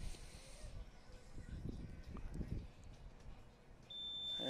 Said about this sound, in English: There's his buzzer. Yep.